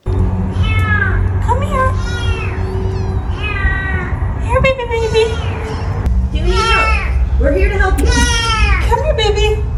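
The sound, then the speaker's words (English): A tuxedo kitten named Murphy meows insistently from inside a sewer before being rescued, one high, plaintive cry after another, loud over a steady low rumbling drone, with the calls coming faster and overlapping toward the end. “let's show Sewer Cat video”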